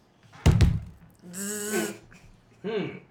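A quick burst of two or three heavy knocks on an apartment door (4A, on the fourth floor of an old apartment building) rings out loudly, followed by a person's drawn-out murmuring vocal sounds.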